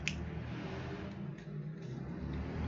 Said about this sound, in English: There are motorcycles going on.